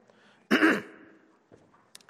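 throat clearing

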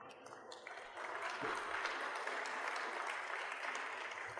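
applause

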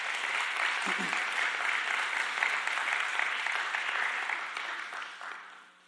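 audience applause

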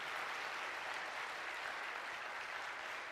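applause

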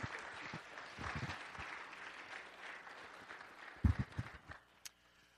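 round of applause

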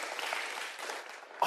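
audience cheering and applauding

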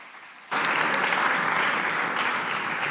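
audience applause welcoming speaker

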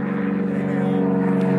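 airplane flying overhead

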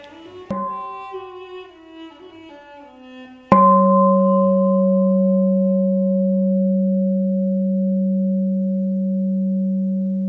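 mindfulness bell ringing

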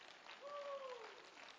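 audience clapping hands

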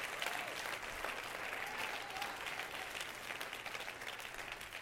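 audience clapping hands

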